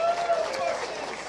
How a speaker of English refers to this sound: I think if you believe in it, why don't we clap for that? If you believe in it.